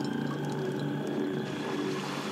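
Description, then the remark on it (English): A deep, sustained whale-like moan with steady tonal bands, layered over a dense, rumbling wash of strange background noise that persists throughout. “It made me think of like a big whale at first, and then another weird noise comes in behind the whale.”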